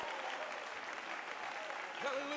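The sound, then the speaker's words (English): An audience claps their hands in praise of God during a church service, a dense, steady wash of applause with no gaps, and a voice briefly rises over the clapping near the end. “Oh, you ought to clap your hands and give Him great praise tonight.”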